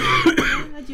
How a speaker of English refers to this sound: Oh no, … is dying in her sleep. It's interpretive coughing. No, it's very real.